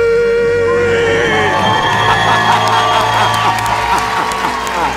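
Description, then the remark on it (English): A loud crowd in a lobby cheers and applauds continuously after a debt-free scream, with whoops and shouts rising over dense clapping. “And the crowd in the lobby goes wild.”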